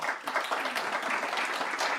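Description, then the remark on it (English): An audience applauds the panelists at the end of a panel discussion, many hands clapping in a dense, even wash of sound that stays at a fairly constant moderate loudness throughout. “I want a round of applause for them.”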